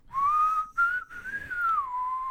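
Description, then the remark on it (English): A clear, sustained human whistle from a man, drifting slowly around one pitch, with a couple of brief breaks for breath, heard alone with no talking. “You gotta roam out there and he's whistling.”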